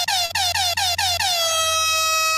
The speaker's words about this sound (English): I appreciate your enthusiasm. I appreciate the air horn as usual. I love being La Reina del Air Horn,